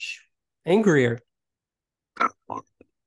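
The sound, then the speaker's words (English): A person makes a loud, pig-like vocal imitation of angry sleeping: a drawn-out grunting squeal, then a few short, breathy snorts spaced apart, with no talking. “Yeah, that was too pig-like.”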